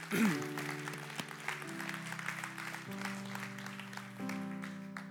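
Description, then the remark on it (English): An audience claps steadily, applauding those who fought for the freedom of the United States of America, in a dense, continuous wash of applause while sustained organ-like chords play underneath, shifting pitch a few times. “But those of you that have had to kill for the freedom that we live in the United States of America, we applaud you and we thank you for the sacrifice that you gave to this country.”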